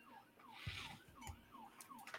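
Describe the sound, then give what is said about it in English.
A police car passes by, its siren wailing in quick, repeating rising-and-falling sweeps, fairly quiet, with some low traffic rumble underneath and no one talking. “That's a cop car coming by.”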